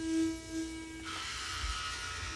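A steady electric toothbrush buzz hums for about a second, then gives way to a rougher, hissy whir that continues quietly to the end. No one speaks.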